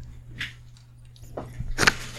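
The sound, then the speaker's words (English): Close-up crunching of food, about three crisp bites or chews spaced irregularly, with the last the loudest, over a steady low hum and no talking. “I hope you hear me crunching all up in the microphone.”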